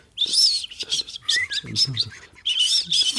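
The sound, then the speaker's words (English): Bright, bird-like chirping flutters from a car's turbo dump valve come in several quick bursts with short gaps, fairly loud, with no talking over them. “it's a bit like the sort of overactive throttler with the dump valve that sounds like a sort of a pigeon or a songbird.”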